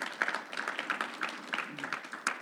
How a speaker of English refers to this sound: Give yourselves another hand clap. You're amazing people.